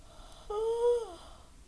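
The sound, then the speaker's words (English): A tired person gives a single drawn-out voiced yawn, rising slightly in pitch and then sighing down over about three-quarters of a second, with quiet background noise before and after. “I just yawned.”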